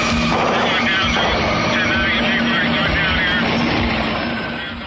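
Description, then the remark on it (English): A smoking helicopter going down in flames roars loudly, its engine whine and rotor thrum forming a dense, continuous drone that fades slightly at the end. “we're thrust into the action as we see a smoking helicopter go down in flames already in progress.”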